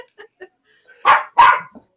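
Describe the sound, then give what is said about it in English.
A dog, Echo, gives two loud barks in quick succession, preceded by a few faint, soft yips or whines. No one speaks. “Oh, Echo, you want to sing along too?”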